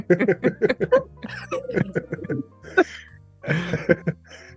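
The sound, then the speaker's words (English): Bursts of breathy laughter break into rough coughs and throat clearing, with short gaps between the fits. No words are spoken. “Don't start me laughing like that. I only just stopped coughing.”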